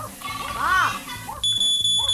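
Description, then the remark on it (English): A smoke alarm suddenly starts up partway through, apparently set off by something burning in the kitchen, sounding a loud, piercing, steady high-pitched tone to the end, after voices and household clatter that continue faintly beneath it. “I think something's burning in the kitchen.”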